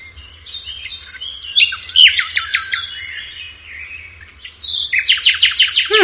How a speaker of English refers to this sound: Hmm. Yeah, we're not used to hearing nightingales, I guess, too, in Canada.